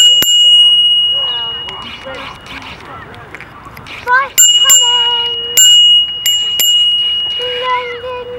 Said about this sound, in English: If I'm not mistaken, it must be time to ring the bell.